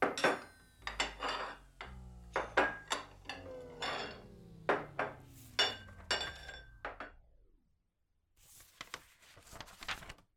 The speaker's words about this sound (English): I'm on dish duty tonight. Please stack your dishes in the center of the table.